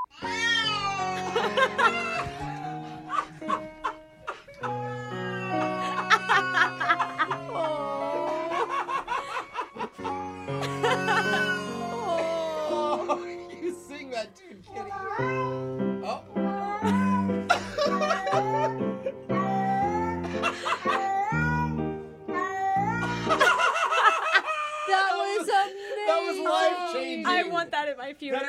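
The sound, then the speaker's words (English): A cat at its owner's wake meows repeatedly in drawn-out, wavering cries while a local pianist plays a steady piano accompaniment, the yowls rising and falling in pitch as if singing along, fairly loud throughout. “Let's listen to a sad cat attending his owner's wake while he performs with a local pianist.”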